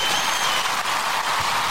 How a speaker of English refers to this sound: Let me give him a clap as well as he comes in.